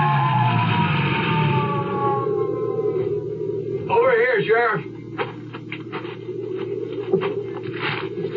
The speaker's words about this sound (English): Well, I got the Jeep started without too much trouble and headed for the bottom of the ski run with my red flasher blinking and the siren.